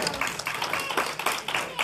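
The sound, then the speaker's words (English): A church audience claps their hands together for God in a steady, fairly fast rhythm, a dense wash of many overlapping claps at a fairly loud level, with some voices mixed in beneath. “Can y'all give God a good hand clap?”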